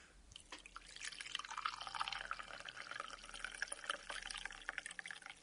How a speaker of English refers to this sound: We better pour this tea and see if it's drinkable. And now for the moment of truth, we'll try and pour the tea out of the teapot.